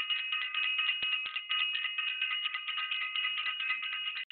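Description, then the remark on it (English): A bell is rung as a shout-out to Self-Invested, ringing continuously in a rapid, shimmering trill, bright and high-pitched, holding steady and fairly loud for about four seconds with no voices. “We're going to ring the bell for Self-Invested.”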